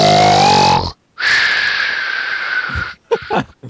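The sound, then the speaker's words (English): A voice mimics cats snoring as they lie on the floor: a rasping, whistly inhale, a short pause, then a long wheezing breath with a thin whistle through it, ending in a few snorty puffs. Fairly loud. “Snow White and the Seven Dwarfs snoring.”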